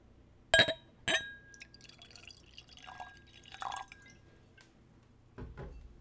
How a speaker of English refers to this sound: And let's go for a pour.